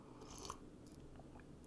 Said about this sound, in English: I'm going to sip a little Crown real quick.